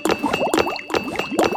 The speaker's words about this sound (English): This time, Little Crow grabbed a big handful of round rocks with his claws and a big rock in his beak. He flew to the sky, then... Smash! Smash the water pitcher!